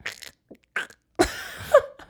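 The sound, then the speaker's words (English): A person imitates a Canada goose call with a few short throaty bursts, then a longer, loud nasal honk that rises and squawks before trailing off. “But Jesus was a Canadian goose. How do geese sound? Like that.”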